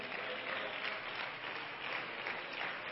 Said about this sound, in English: And now that's a weak hand clap.